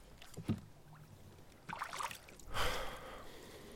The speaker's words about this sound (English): Yeah, enjoying time being in a rowboat with a friend. Just kind of dipping your oars in the water and meandering on the surface, floating.